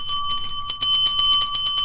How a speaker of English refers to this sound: You remember, in Better Call Saul, where after he had a stroke and he couldn't talk and all he had was that stupid bell he could ring, and people would talk to him.